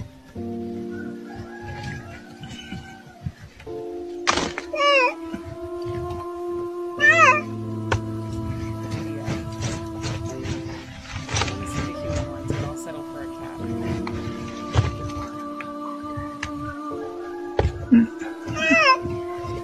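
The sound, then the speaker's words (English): A cat meows repeatedly, its cries sometimes long and drawn out, sometimes short and chirpy, continuing across the whole stretch over a steady background hum. “I believe this is finding a cat.”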